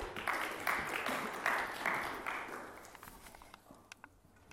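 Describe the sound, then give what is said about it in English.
A roomful of people at a chapel gathering clap together in a steady, dense burst that swells briefly, then thins out and fades to a few scattered claps near the end. “Let's give Kate a round of applause.”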